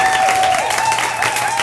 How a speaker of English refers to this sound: And I want to again give a huge applause to our guests here who came tonight.